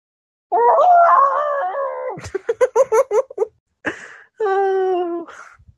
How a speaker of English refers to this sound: Your cat is going mental.